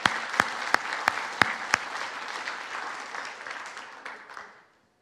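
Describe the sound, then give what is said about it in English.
A church audience applauds: a dense wash of clapping with several sharp, loud claps standing out at the start, then a steady patter that gradually thins and fades to silence. “So I want to ask you, as I have, I want to ask you that you would receive that anointing, that gift that Pastor Dan has by an applause.”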